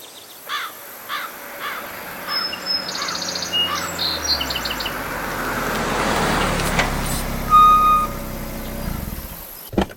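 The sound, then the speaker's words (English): A car rolls up outside a house and parks, its engine rumble growing louder and settling to a stop, while crows caw in the background at the start. “outside of the Ravis' home, Gabriel parks and exits his car, dressed in his scrubs”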